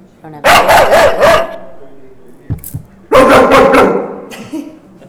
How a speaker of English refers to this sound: So as soon as you hear the bark, my friend, you are going to be on.